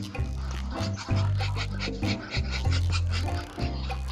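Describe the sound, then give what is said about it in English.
A clawed duck makes low, throaty burbling sounds mixed with breathy hisses, a steady rumbling murmur broken by short raspy bursts over about four seconds, with no quacking. “But perhaps the most terrifying is the fact that they don't quack. They sort of burble and hiss.”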